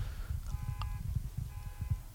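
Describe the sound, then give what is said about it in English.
A car alarm sounds faintly, its electronic tone repeating in short half-second bursts over a heavy low rumble of background noise. “Why is someone's car alarm going off?”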